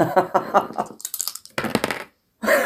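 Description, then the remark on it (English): Dice are tossed and clatter across a hard surface, a quick run of sharp rattling clicks, then a brief pause before another burst of noise. “Just throw the dice away.”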